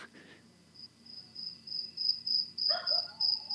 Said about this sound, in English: Actually, give me like 3 seconds. I want to record the crickets behind you.